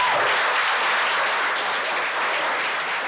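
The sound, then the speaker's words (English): A roomful of people breaks into sustained applause and cheering after a speech, a dense, steady wash of many hands clapping at once, holding an even, loud level for the full three seconds without a pause. “And I make it back, and the room cheers, and I'm surrounded by family, people that I don't know, but that instantly there's a kinship and a kindness and a support.”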